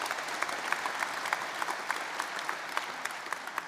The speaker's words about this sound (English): Let's give her a round of applause.